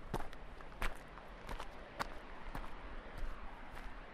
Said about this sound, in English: Dirt and small twigs crunch beneath your feet.